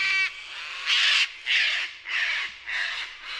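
A sulfur-crested cockatoo squawks repeatedly, five harsh, raspy screeches in a loose rhythm, loud with no talking.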